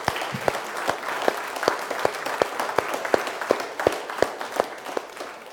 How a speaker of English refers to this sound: I think before we get started this morning, we ought to just give the Lord a hand clap of praise this morning.